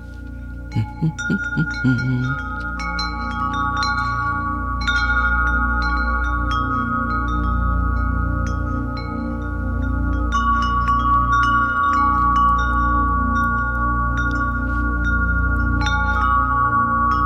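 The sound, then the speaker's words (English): Wind chimes ring continuously, with irregular bright strikes layered over sustained, overlapping metallic tones at a steady, moderate loudness, preceded by a few quick low pulses at the start, played as an ambient sound by the Alexa skill Brain Healing Sounds. “I know that for some people, wind chimes are super annoying.”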